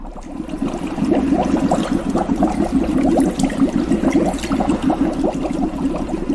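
Continuous thick bubbling with rapid, irregular pops from a cauldron in the corner of a cellar, like a pot of liquid boiling, steady and fairly loud across the whole stretch with no voices.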